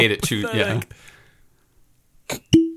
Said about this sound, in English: Wait, you ready for the cork pop? Yes, I am. Oh, we got to try that again.